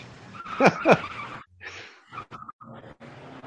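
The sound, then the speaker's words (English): A Monte Carlo car peels away with two sharp, rising tire squeals, followed by engine rumble and clattering noise as the vehicle speeds off, loud. “What kind of car was that? I couldn't tell. It could have been a Monte Carlo.”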